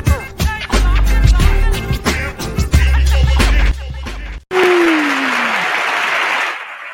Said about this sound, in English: Crowd is loud. Crowd is loud. The Absolutely. Crowd is loud because we got a dope MC.